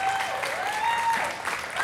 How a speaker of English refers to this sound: I want y'all to celebrate this young man. Give him a huge round of applause as he comes up today.